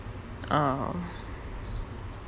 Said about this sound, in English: Birds.